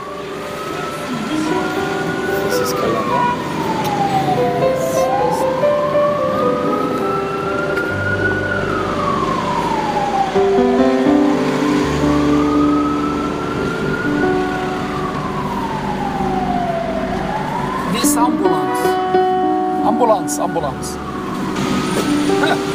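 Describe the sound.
An ambulance's wailing siren rises and falls in slow sweeps, loud, passing quickly over traffic rumble while people talk.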